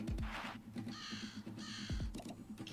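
Two harsh, raspy crow caws in quick succession ring out outdoors, over a low rumbling background and a few scattered clicks, with no one speaking.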